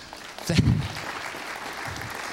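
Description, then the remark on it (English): An audience claps after hearing of a 25-year marriage, the applause swelling in a brief louder burst early on before settling into a steady, moderate patter of many hands that carries on to the end. “If they do clap, I don't know if they're clapping because they're like, wow, she put up with you, 25, wow, that's nice”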